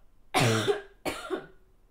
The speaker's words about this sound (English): That was a bad cough. Why did you just cough like that? I think the Red Bull just gave me cancer.